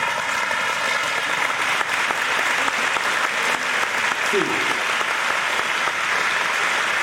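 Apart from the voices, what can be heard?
audience applause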